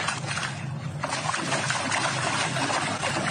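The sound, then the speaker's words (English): Steady watery splashing and sloshing as a little girl and her dad stomp through a shallow puddle on a walk, continuous for a few seconds with no clear speech. “They're splashing around in a puddle together.”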